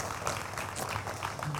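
A steady patter of audience applause, many hands clapping in a dense, even wash of noise for the whole moment, fairly soft in level with no voices on top.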